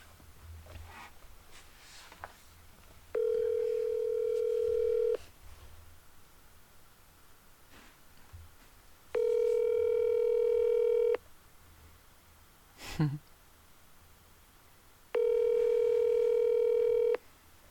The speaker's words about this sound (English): And I'm really tired, but I think I will try to call him really quick and see if I can catch him on the phone.